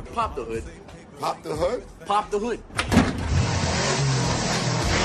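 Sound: car engine revving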